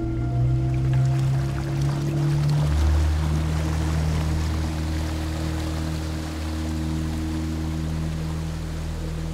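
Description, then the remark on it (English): A boat's motor drones steadily while water washes and hisses softly along the hull as the craft glides slowly down a small channel on calm water, with no voices. “Instead, we glided down a small channel along calm water until we reached an old dilapidated dock.”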